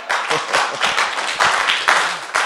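An audience claps at a preacher's request during his preaching, in a steady, dense wash of applause, swelling in loud surges with a few sharper individual claps standing out, and faint voices mixed underneath.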